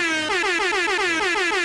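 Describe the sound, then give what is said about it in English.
A loud, blaring air horn sound effect blasts continuously, its harsh tone wavering in a rapid rhythmic pulse throughout, with no voices. “Man, you better not put no damn horn.”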